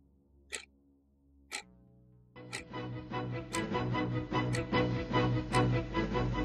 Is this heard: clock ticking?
yes